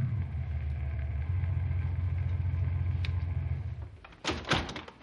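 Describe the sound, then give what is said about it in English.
A car engine rumbles low and steady as the vehicle coasts slowly up to a house, then falls quiet, followed by a couple of car door clunks near the end. “Cut the speed of your car and coast up to the house.”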